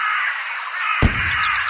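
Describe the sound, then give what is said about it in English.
Seagulls call in a continuous harsh, cawing chorus, broken midway by a sudden low thud, followed by a few short rising cries near the end. No one speaks. “Despite several weeks now to acclimatize themselves, smaller birds such as the crested nuthatch tend to avoid the gently wafting oblongs, while larger birds, or flocks, seagulls in particular, have been known to attack.”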